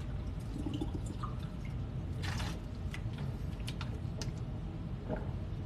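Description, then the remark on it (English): Spring water sloshes and splashes in short bursts as someone drinks it, with a few drip-like clicks, over a steady low rumble of background noise; no one speaks. “Spring water, you guys.”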